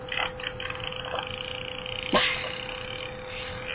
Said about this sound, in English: Okay, that didn't sound like it was in bits. That just sounded like one long fart.